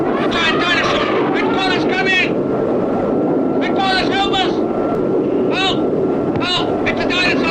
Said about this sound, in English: Help, it's a dinosaur. Yeah. That sounds like an elephant. He roars like an elephant.